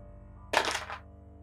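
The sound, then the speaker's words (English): A brief clatter of dice rolled across a tabletop for a game check, landing on 12, a quick burst of hard knocks that settles within half a second, over a low steady background hum. “The dice are so far over there, I can't see them. That's a 12, which is an extreme success.”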